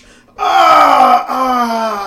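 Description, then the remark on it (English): A man's voice imitates a male character's death groan from the video game World of Warcraft: a loud, sustained, strained moan that slowly sinks in pitch, briefly catches partway, then drags on to the end. “That's the death noise for men. They like calm as they die.”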